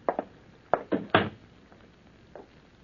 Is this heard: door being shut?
yes